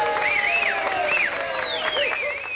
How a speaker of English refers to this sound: But that applause was for Andy Krasowski of Comcast Metal Products, Mars, PA, for being the first person to answer last week's trivia question by identifying the state of Connecticut.